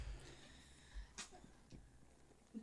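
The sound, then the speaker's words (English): A single small, quick sneeze bursts out around the middle, short and fairly soft, with faint room noise and a few light shuffles around it. “Oh, cutest little sneeze.”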